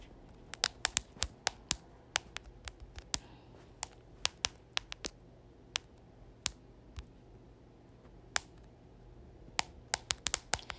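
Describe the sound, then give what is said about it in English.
Quiet typing on a keyboard: sharp key clicks come in irregular bursts and pauses over a soft background hum, with no one talking. “My bad, I'm typing.”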